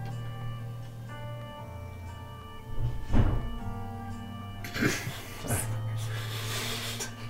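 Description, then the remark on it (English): A door bumped open by a cat: a dull thunk, then a second softer knock and faint creaky rattling, all over a steady low electrical hum. “It's my cat. The cat is right open the door.”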